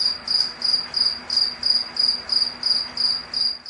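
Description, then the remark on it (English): A cricket chirps steadily, repeating short, bright trills roughly twice a second, clear, with a faint low hum underneath and no one talking. “As we bring our hands to our chest and touch our hearts where they beat, the cricket feels love.”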